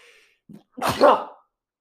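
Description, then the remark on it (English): A single sharp sneeze with a brief inhale before it, the burst loud and breathy, then quiet. “Bless you.”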